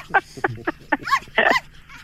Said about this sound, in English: That is the lonely sound of a dog who's lost its life partner.